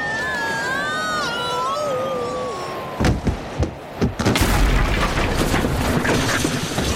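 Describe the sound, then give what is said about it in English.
A falling whistle glides down, then a few sharp thuds hit before a loud, sustained crash of smashing and tumbling debris rumbles on to the end, as Bobby Wonder, tripping on melted, fused roller skate wheels, bursts through the wall of a roller rink. “Oh, he's crashed right through the wall of the roller rink.”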